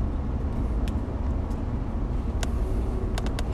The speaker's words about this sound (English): We're driving the longest lasting, most dependable truck on the highway. According to the commercials.